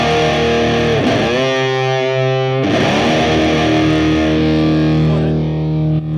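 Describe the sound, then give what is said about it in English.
Heavily distorted electric guitar played through an overdrive pedal into two 100-watt high-gain JCM 900 amplifiers in stereo, distortion set high for a song intro. Thick overdriven tone, a couple of loud strummed chords ringing out and sustaining with a swirling, pitch-bending wobble, played alone. “For the distortion, you know, for the intro, we usually, it's pretty rocking, so I usually set them to high.”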